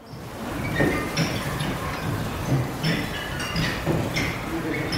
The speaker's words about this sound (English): A metal clamp is affixed to the bottom of each plank, oriented so that when the plank moves, it rubs the clamp against a nail, creating the distinctive squeaking sound.